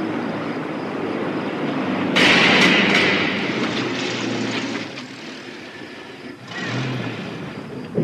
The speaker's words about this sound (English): I think I even hear the truck in the distance.